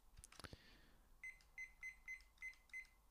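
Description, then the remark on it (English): A small cooking timer gives six short, high electronic beeps in a quick, steady series as it is set for seven minutes, after a few soft clicks of handling. “So, as always, got my wee cooking timer here.”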